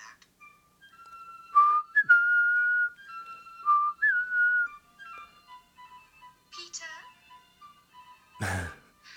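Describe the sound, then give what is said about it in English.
A clear whistled melody, the Peter Pan whistle, of sustained and sliding notes over several seconds, followed by a brief burst of breathy noise near the end, with no talking. “If you ever happen to see me out in public somewhere, do the Peter Pan whistle and I'll know.”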